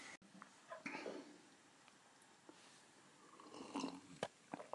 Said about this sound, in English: The sound of me swallowing tea in the kitchen with the laptop open in front of me and the back of an envelope on which I've written some stuff here.